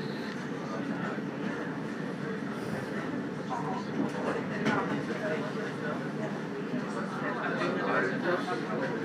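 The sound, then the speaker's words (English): A tram rumbles steadily past on a city street with hardly any cars, its low mechanical drone and rail noise continuous, with faint murmuring voices underneath. “No cars on the street, hardly any cars at all on this street, just trams.”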